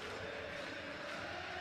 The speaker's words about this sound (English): Sellout crowd on its feet singing. That is why they bought tickets.